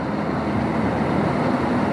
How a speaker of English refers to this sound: Why is there so much fucking traffic?